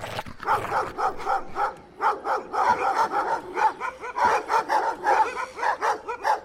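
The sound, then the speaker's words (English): Several dogs bark loudly in a rapid, overlapping string of sharp yaps, keeping up a continuous frenzied barrage with no pauses and no one talking. “In slow motion, I saw the nearest dog's eyes pop out of its head, as if some invisible hand was squeezing the back of its skull.”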